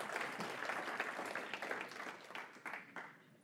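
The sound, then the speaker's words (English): During a sermon, an audience breaks into sustained applause in praise of God, many hands clapping in a dense wash with scattered sharper claps and shouted voices mixed in, steady and fairly loud throughout. “Come on, let's give him a shout and a clap.”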